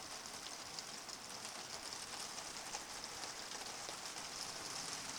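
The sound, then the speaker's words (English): Heavy rain drums steadily on a tent, a dense, continuous hiss of countless drops pattering overhead with no breaks, and no voices present. “Can you hear the rain coming down even more heavily now?”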